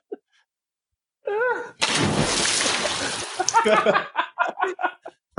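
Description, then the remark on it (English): A sound effect of a woman jumping into a pool to save Squints: a short wavering whoop gives way to a loud, rushing splash of water into the pool, which breaks into a series of rhythmic sloshing bursts before fading. “Now, was that the sound effect of her like jumping in the pool to save Squints, or was that the sound effect of our collective panties?”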